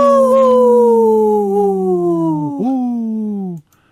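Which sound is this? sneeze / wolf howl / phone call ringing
wolf howl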